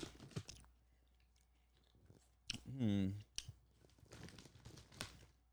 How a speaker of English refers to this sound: He's eating a crunchy snack.